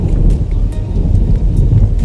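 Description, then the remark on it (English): A thunderstorm rumbles loudly and steadily, deep rolling thunder layered with the hiss and patter of falling rain, with no voices present. “Gotta get your umbrella.”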